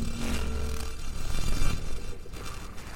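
A sonification of solar wind data from the pair of STEREO satellites, in the artwork Black Rain by the artist Semiconductor: a dense, hissing, crackling wash of noise with a faint steady low hum early on, swelling slightly in the middle, with no voices.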